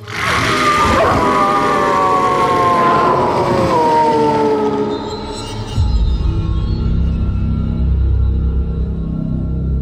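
The women of Shady Pines howl in unison like a wolf pack. Their long, wavering cries slide downward for a few seconds, then give way to a low, steady rumble.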